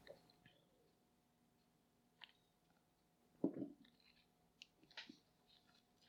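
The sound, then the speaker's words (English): Someone quietly sips a Coke: a few soft mouth clicks and small slurping, swallowing sounds, with one fuller gulp midway, and no talking. “Sorry, I just want to get a sip off of my Coke here.”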